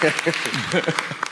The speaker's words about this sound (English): They're clapping now. At that comment.